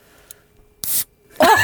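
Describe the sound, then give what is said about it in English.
A can of Pepsi Max cracks open: a small click, then a sharp hissing burst of escaping gas, followed by a louder, longer fizzing rush toward the end. “Oh my god, how do you open a can?”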